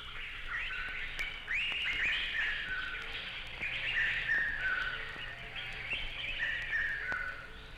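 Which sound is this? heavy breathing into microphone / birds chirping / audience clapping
birds chirping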